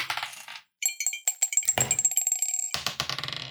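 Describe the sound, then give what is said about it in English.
Players roll twel-sided dice (d12) in a tabletop game, the dice rolling and clattering across a hard table in a quick burst of sharp clicks and rattles, settling briefly before another tumble of bouncing knocks. No one speaks. “everyone roll me a d12, please.”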